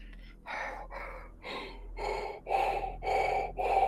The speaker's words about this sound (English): You do hear what you think might be heavy breathing from somewhere off to the right.